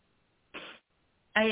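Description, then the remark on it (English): Two short bursts of coughing and throat clearing: a breathy, rasping cough, a brief pause, then a louder, more voiced clearing of the throat. No talking. “I always start coughing before I channel a spirit.”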